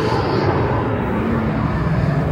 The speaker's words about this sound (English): Sorry, there's an airplane. We're outside right now.